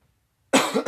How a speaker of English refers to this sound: Sorry. I still have the cough a little bit, so please ignore me on that. I do apologize in advance for the coughing.